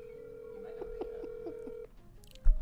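A steady telephone tone with a quick series of about six dialing beeps, heard through a speakerphone at moderate volume, then it cuts off with a soft thump at the end.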